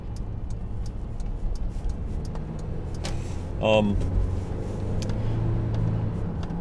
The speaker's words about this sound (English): Alright, I'm gonna wait around for this dump truck.